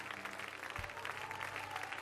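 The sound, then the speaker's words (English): An audience claps hands unto God in worship, in a dense, continuous wash of applause, steady and fairly loud throughout, with a faint low hum underneath. “Move in as close as you can and clap those hands unto God.”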